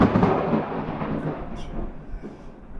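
A loud, deep rumble of thunder from a storm rolls through, heavy low booming that slowly fades and grumbles on over a few seconds, with no voices present.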